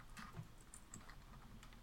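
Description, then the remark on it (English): Quick, irregular clicking of fingers typing a website address on a computer keyboard, fairly soft, with no voices over it. “I started typing it, and Jimson Weed came up.”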